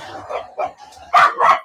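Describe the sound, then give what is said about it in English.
Corgis bark in a quick run of sharp yaps, a few softer ones leading into two loud, high barks at the end, with no talking over them. “We got the corgis in here.”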